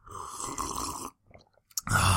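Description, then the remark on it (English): A loud slurping sip of hot Shaq-brand coffee, a brief quiet pause with faint small sounds, then another noisy slurp. No one speaks. “You know, I was just down in the dumps, but that sip of good old Shaq coffee really just pumped me out of there.”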